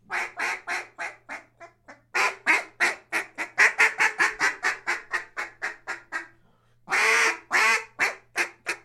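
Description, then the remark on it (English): A small Omega 4 duck call blown loud and clear: a short run of quacks, then a long rhythmic string of rapid quacks, a brief pause, and a few drawn-out, raspy quacks. “It's not the call, trust me. It's operator air. Sounds pretty good though, this little Omega 4.”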